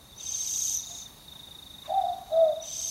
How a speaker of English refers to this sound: It sounds like there's lots of insects out tonight for them to catch.